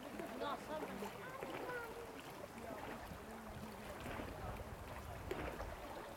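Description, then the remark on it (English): Steady rushing and lapping of water fills the scene without a break, with indistinct voices murmuring faintly underneath. “You can hear the noise of the voices, the noise of the water.”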